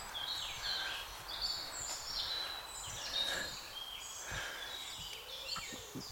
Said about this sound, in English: That's why it resonates with bird sound. Whoa, it resonates with bird sound, I tell you.